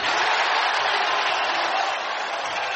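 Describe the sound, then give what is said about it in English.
An arena crowd at a Philadelphia 76ers basketball game cheers as Fultz tees up a three, in a loud, sustained roar that holds steady for about three seconds, a dense wash of voices with no single speaker standing out. “And the crowd tells you the story about it.”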